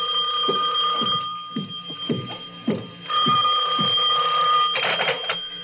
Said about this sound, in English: My substitute secretary hadn't come in yet, but my phone was ringing.